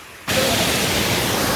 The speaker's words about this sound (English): We're at the top of the waterfall. No. Well, we're at the bottom of the waterfall, watching it. If you're at the top of the waterfall, it's not as impressive.